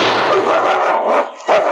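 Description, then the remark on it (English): A dog barks and snarls ferociously while attacking a man at the entrance of a mine, leaping straight at the hand holding a gun. A loud, continuous stretch of aggressive noise that drops for a moment, then erupts again in a fresh burst. “Sensing that his master was in danger, raced madly into the entrance and leaped straight at the hand that held the gun blazing at the Mountie.”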